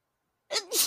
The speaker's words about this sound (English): Like, oh, God, I need to sneeze.